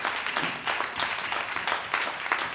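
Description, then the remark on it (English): An audience at a church service claps hands in praise of Jesus, a dense crowd of overlapping claps at a steady, fairly loud level with bright, crisp texture and no talking. “How about we just give Jesus one more hand clap of praise together, shall we?”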